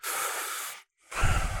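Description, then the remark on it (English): A voice imitates heavy breathing inside a space suit: a long, hissy inhale, a brief pause, then a rougher, airy exhale, fairly loud, with no talking. “Oh, yeah, the breathing and the suit.”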